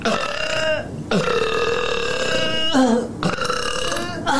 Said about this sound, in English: She's in burping girl mode today.